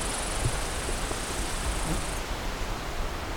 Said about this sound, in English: Lots of insects too. And you have a cicada or something cicada-like singing here.